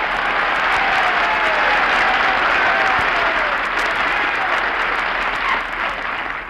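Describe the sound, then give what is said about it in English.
A crowd claps steadily and loudly for several seconds, a dense wash of hand claps that tapers slightly at the end, with faint whoops or voices mixed in. “What is that applause?”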